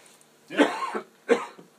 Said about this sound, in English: excuse me. While I cough. Yeah, frog in your throat.